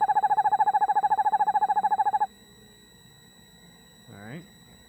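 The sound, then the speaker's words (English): An owl trying to get out of a birdhouse calls loudly with a rapid, steady pulsing trill for about two seconds, then stops; after a short quiet stretch, a brief rising wavering note follows. “This is just an owl trying to get out of a birdhouse.”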